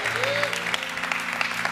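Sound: audience applause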